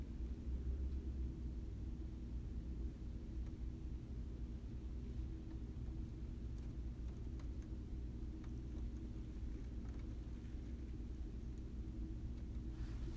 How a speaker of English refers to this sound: I hear the wind.